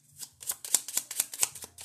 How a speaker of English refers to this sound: Anything else? Okay, they're telling me to keep shuffling. And that's what we're gonna do.